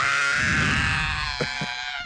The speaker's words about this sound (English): Why are you screaming like that?